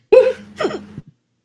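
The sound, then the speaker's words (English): A couple of short, voiced hiccup-like bursts, the first sharp and fairly loud, the second slightly softer, followed by a faint little click, with no talking. “I just got the hiccups.”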